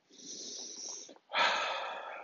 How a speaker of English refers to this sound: Take a moment and just breathe. In through your nose, out through your mouth, and then just focus on your breath.